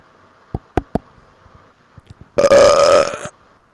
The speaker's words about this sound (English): Anyway, to the NBA and Adam Silver. Ooh, all right. This belch is for you.